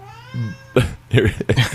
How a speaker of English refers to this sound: Oh shit! Cat in here.